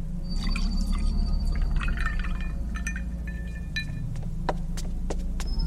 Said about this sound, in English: Esther, the older waitress, ran to the fountain and poured me a glass.